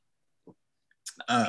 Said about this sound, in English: Oh, here he goes. I had to sneeze. You gotta sneeze.